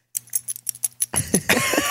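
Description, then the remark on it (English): The collar tags of Walter, a small Yorkie about one year old, jingle in a quick, irregular run of bright metallic clinks, then give way to louder rustling and handling noise at the end. No one speaks. “You can hear his little jingly.”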